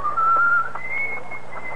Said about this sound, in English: And there, as he walked down the crowded Haymarket, whistling a jaunty tune...